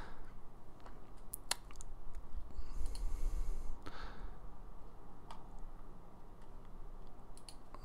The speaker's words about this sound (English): Oh, I'm clicking on the wrong thing. There we go.